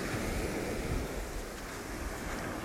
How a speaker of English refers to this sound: I've been traveling for the last month or so, and I'm really happy to be back here on Maui and wanted to do a breathwork session right here on the beach with the sound of the ocean and the crashing waves in the background.